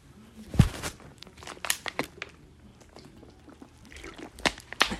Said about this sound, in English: Water break.